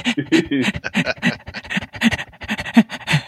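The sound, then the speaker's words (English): Heavy, rapid panting: a quick run of harsh, breathy bursts at an uneven, fast rhythm, fairly loud and without any speech, like someone gasping for air after hard exertion. “You sound like a dog that just went for a hard run or something.”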